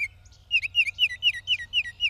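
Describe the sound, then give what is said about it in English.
An orange and black songbird sings in a yard, a quick series of clear, whistled notes in a steady repeating rhythm, bright, over a faint low background hum with no voices. “And one of the things that I really, really love about them is their song.”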